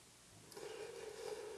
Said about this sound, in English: Anybody want to raise their hands? Who's ringing the bell? I am.